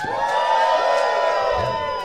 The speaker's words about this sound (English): This is the Plus Two Comedy Podcast, live from Nekocon. They're good on the applause. This is good. They're right on top of it.